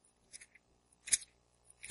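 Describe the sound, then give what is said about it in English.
Bible pages turning as listeners look up 2 Corinthians during a sermon: a few soft, brief papery rustles and flicks spaced irregularly, fairly faint, with no talking. “I should hear pages turning. See?”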